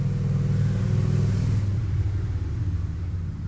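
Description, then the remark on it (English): A car engine revs loudly as the vehicle passes in the evening, its deep rumble swelling in the first second and a half, then easing slightly as it moves away. No voices. “There's people driving home from shit jobs and shit cars.”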